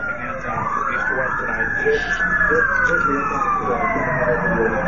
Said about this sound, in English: And, listen again, to the sirens. The law enforcement helicopters on this.